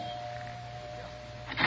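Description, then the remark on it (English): A penthouse doorbell in a large apartment building, rung by police officers, buzzes with one steady, unbroken electric tone for nearly two seconds over a low background hum, ending with a short, louder rustle or thump. “We took the elevator up and rang the bell.”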